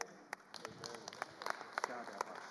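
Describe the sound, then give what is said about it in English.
A church audience claps in scattered, uneven bursts, giving praise to God during a sermon, sharp hand claps ringing out while voices call out and cheer underneath. “You are clapping to God, not to me.”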